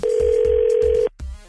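A phone line ringing on an outgoing call placed by the morning show on radio station 102.9 The Wolf: one steady, mid-pitched electronic ring tone holds for about a second, cuts off abruptly, and a brief softer sound follows.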